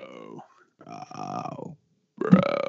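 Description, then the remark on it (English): A man says a drawn-out, guttural "bro" three times in a row, each one croaked out like a belch, the last louder and rougher than the first two. “You've got nothing else except bro that sounds like belches.”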